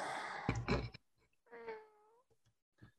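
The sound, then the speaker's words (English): A cat lets out a single drawn-out meow that slides downward in pitch, just after a brief burst of rustling noise, with no talking. “He's got a kitty there.”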